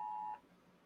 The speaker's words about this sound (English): A little hurricane warning there, bud. Flash flood warning until 2:15. Yeah, no matter if you silence your phone.